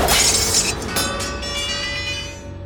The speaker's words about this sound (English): The sword cut through in a burst of sparks, and the shattered metal clattered to the ground.